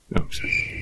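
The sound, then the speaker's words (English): A short burst of cricket chirping, a thin, steady high-pitched trill that starts abruptly after a brief noise and holds at moderate volume until it cuts off. “That's a crickets moment right there, my friend.”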